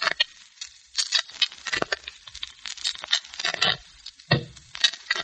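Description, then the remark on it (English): Playing cards being shuffled: quick, crisp riffling bursts of papery flutter, repeated several times with brief pauses between, with no voices. “Sound of shuffling cards can be dangerous music to certain ears, particularly to Mark Easy.”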